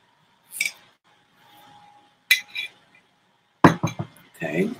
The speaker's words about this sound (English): And excuse me. I'm taking a sip of this coffee.